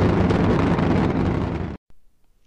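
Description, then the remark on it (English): The space shuttle Atlantis launches on its final flight: a loud, dense, rumbling roar fills the full range with a crackling texture, holding steady before cutting off abruptly, followed by a brief faint burst and near silence. “The space shuttle spreads its wings one final time for the start of a sentimental journey into history.”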